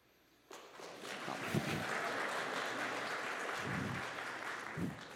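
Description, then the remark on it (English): An audience applauds a preacher's singing. The steady applause starts abruptly and holds at an even, dense level for several seconds, a broad wash of many hands clapping with no voices. “Now I sing and I didn't expect that either.”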